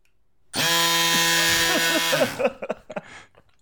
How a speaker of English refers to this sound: It's a digital tire inflator with a very accurate digital pressure gauge built into it. So, and it makes a lot of noise. It does make a lot of noise.